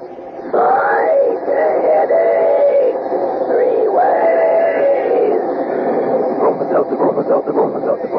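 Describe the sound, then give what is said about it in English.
A steam train sound effect: a loud, wavering whistle-like wail sounds twice, then gives way to quick, rhythmic chuffing that continues to the end. “But when it's a common sick headache that's got you down, take this tip from our educated train.”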